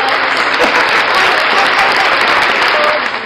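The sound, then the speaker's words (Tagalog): A crowd applauds loudly and steadily at a lunch session event, dense clapping filling the space for a few seconds with no break, the sound staying even throughout. “On time na yung, ano natin, palakpak natin, yung mga boo natin, and the other things.”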